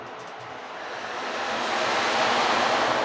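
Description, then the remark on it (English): An ocean drum is rolled to mimic the tide coming in: a steady wash of rolling, surf-like noise swells gradually louder over a few seconds, like waves rushing onto shore, with no voices over it. “And as the tide rolls in slowly, we're going to breathe in. And then when we hear the rush of the tide crashing, then we will exhale.”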